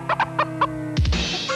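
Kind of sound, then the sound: animal, chicken clucking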